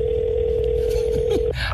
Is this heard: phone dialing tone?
yes